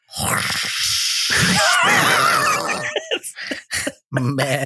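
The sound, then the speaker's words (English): A person imitates a storm with their voice, making a sustained breathy whoosh with wavering, howling whistles for about three seconds, then a few shorter puffs and rasping bursts. “There's a storm in it, so you got to do a whole storm.”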